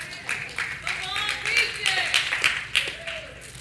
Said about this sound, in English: Two claps. God bless you. Look, wait, no, I didn't do it for that. I wasn't waiting for applause.